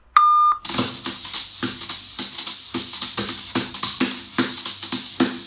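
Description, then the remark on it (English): A single short, loud electronic voicemail beep from a phone sounds right at the start, then gives way at once to loud, rhythmic music with steady percussive hits. “This is Andy's phone. Leave a message.”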